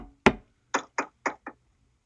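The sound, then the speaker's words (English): Knuckles rap on wood: one sharp knock, a brief pause, then four quick, even knocks, fairly loud, with no talking over them. “Knock on wood, it isn't.”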